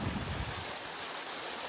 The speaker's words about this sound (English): If you're wondering about the noise in the back, that's just the river.